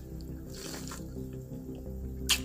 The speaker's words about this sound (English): As I sip tea and say that. Dang, that was a sip tea moment, too.